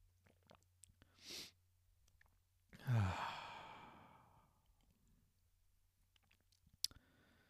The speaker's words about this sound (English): I'm just going to take a sip of tea.